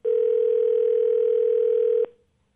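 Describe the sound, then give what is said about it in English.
A single telephone ringback tone on an outgoing call: one steady, loud electronic hum lasting about two seconds, then cutting off into silence. No one speaks. “It's ringing.”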